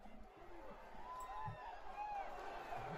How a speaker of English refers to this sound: a very shocked and angry crowd threw rubbish into the ring